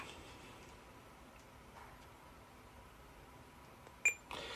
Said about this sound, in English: And you just heard a beep, and that means the unit is now recording.